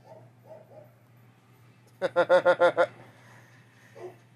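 A quick, loud burst of about six yapping dog barks in rapid succession, with faint voice sounds before and after over a steady low hum.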